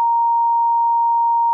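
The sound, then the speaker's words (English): A single steady electronic beep tone, loud and unbroken, holds for about a second and a half before cutting off abruptly, censoring a phone number being read out. “I might bleep it so not random people who hear the show call you.”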